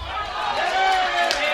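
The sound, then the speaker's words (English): A large crowd at the wrestling event Anniversary Two reacts with disapproval to a man speaking on the mic, a steady, loud wash of booing and jeering voices that holds for the whole moment without letting up. “Crowd doesn't seem to agree.”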